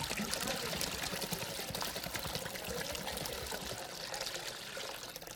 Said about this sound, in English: So this is what it looks like when we pour into God. I'm going to pour this water into here and watch what happens, okay?